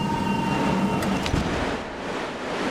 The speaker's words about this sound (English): His delivery is drowned out by a sudden explosion of wind.